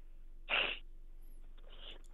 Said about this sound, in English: I mean, you all right, man? Because you can't be doing too much coughing on the air because people can hear that.